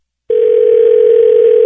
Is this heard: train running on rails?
no